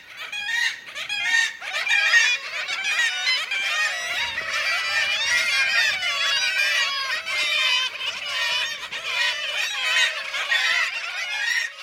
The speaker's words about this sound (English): They gather in breeding colonies where they yell kittiwake incessantly to remind anyone in earshot just what kind of birds they are. The black-legged kittiwakes in this recording are in Norway.